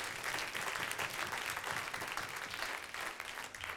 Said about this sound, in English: Clap to the Lord before you see it.